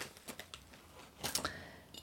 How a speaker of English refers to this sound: This is Frontier Co-op that I got it from. And it's in a foil bag that I'm just going to cut open.